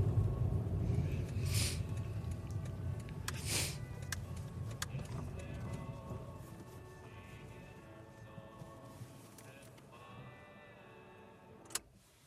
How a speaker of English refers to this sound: The car stops.